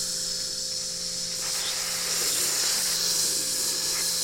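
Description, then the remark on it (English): A steady sizzle with crackling hiss of burgers frying on a hot grill, running continuously without any talking. “You guys hear that? Sizzling hot takes, brought to you by Der Burgers.”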